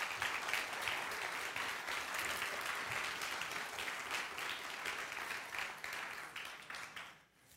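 An audience applauds in a dense, steady wash of clapping that holds for about seven seconds, then tapers off quickly at the end.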